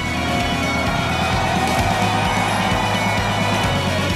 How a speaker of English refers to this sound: The flashbulbs popping and the crowd roaring. Here come the Gators. And we are underway in the swamp.